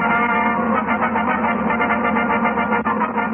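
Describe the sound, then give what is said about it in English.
A brassy orchestral fanfare plays loud and steady for a few seconds, with a thin, slightly distorted old-radio sound and no voices over it. “while that fanfare is pretty standard now, it does seem to have an echo of … in it”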